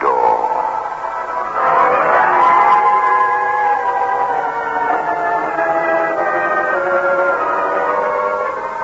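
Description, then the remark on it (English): A door creaks open slowly in one long, drawn-out groan, its strained pitch wavering and sliding for several seconds, presented as the title sound of the spine-chiller show The Creaking Door. It stays loud and steady throughout, with no voices. “The manufacturers of State Express 3-5 Filter King cigarettes take pleasure in presenting The Creaking Door.”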